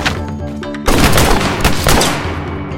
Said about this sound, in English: I quickly punched him before finding cover for more gunshots.